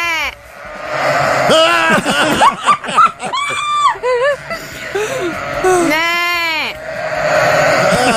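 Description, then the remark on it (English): A flock of a couple hundred penned sheep bleats loudly and continuously after a person imitates a baa, many overlapping wavering baas rising and falling together, with a dense chorus of bleating filling the background. “There's a couple hundred sheep here.”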